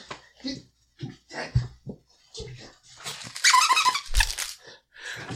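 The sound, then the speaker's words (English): A squeaky toy squeaks in a quick burst of bright, high-pitched squeals as a dog chews it while wanting to play, with a person talking before and around the squeaking. “I think my dog is coming. You're going to hear something squeak.”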